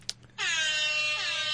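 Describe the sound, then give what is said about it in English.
A loud, sustained air horn sound effect played from a phone app, with a brassy, harmonic-rich tone, kicks in after a brief click and holds steady for over a second, alone with no talking. “Where's your air horn thing on your phone? That would help.”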